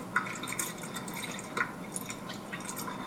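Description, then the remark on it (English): Soft sloshing and dripping water with small splashes and trickles, irregular and continuous, as strawberries are agitated in a bowl of lightly sudsy water. No one speaks. “So you just add all those strawberries in. And you agitate them. Here's how you agitate them. Well, a little bit too much water here.”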